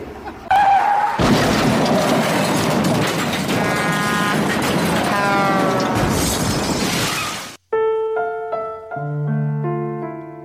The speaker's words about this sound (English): was killed that night in a horrible car crash.